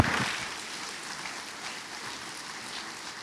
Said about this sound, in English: Let's give him a Sailorville round of applause as he comes and preaches today.